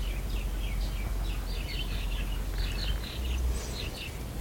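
Repeated high, bright bird chirps and short trills come in bursts over a steady low rumble of outdoor background noise, with no one talking.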